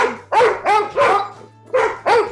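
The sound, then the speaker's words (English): A dog barks five times in quick succession, loud, with a brief pause before the last two barks and no voices around it. “you want to say something, Wolfgang?”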